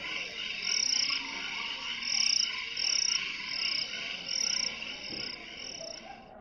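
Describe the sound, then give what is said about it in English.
A steady chorus of crickets chirps at night by a campfire in repeating pulses, with a dense layer of insect and frog-like trilling filling the background, an outdoor ambience with no voices. “But until then, I'm just going to let you listen to some crickets as we watch the campfire roll.”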